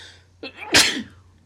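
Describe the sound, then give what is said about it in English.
A single loud sneeze: a short sharp inhale followed by an explosive burst of breath that fades quickly, with a faint low hum in the background and no talking. “Hang on, I got to sneeze, but then I have a question.”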